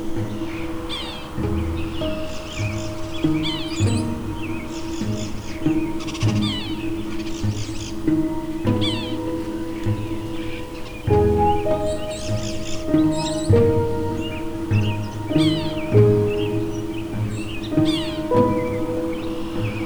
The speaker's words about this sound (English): The call of the sapsucker is a simple squeak, not unlike the sound of a squeak toy.